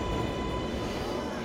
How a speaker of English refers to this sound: We're getting on the subway to go to a place called Leo's Latticini, which is one of the old Italian cheese stores, still in Corona.